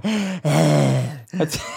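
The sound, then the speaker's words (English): A voice imitates heavy breathing coming from a bathroom, with long, loud, groaning exhales followed by a brief, sharp gasp near the end. “I can hear heavy breathing from the bathroom.”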